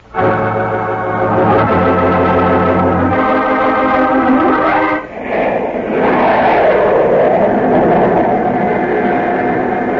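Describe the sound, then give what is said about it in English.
A jet plane flying to Miami roars past: a loud, steady whine with layered tones that shifts pitch in steps, dips briefly, then gives way to a broad rushing roar with a slowly wavering hum. No one speaks. “My assistant, Harry Peters, and I will leave immediately for Miami by jet plane.”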